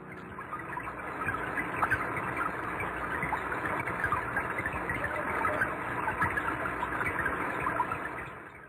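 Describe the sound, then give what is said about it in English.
Rain recorded underwater: a dense, steady patter of countless tiny drop impacts, crackling and fizzing in the mid and upper range over a low muffled rumble, continuous with no voices. “But for now, I want to leave you with a little gift of listening to what a fish might hear on a rainy day.”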